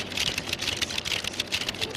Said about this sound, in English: The title of this video is Chinese Bank Teller Counts Cash by Ear.